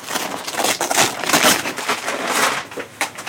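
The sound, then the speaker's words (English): Crinkling and tearing of brown paper as a package wrapped neatly in brown paper, with a brown paper box inside, is unwrapped in an office, a steady rustle with sharp crackles running throughout, without any talking. “The package was wrapped neatly in brown paper.”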